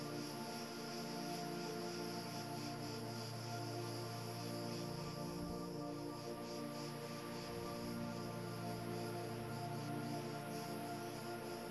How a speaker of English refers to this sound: The waves of the sea below keep a rhythm with the cicadas in the pines above you.